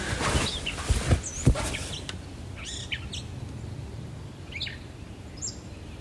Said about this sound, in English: I'm waking up on Cape Cod to the craziest bird noises outside. I don't know if you can hear them.